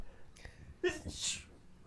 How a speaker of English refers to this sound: …, whose sneeze was that? That was me.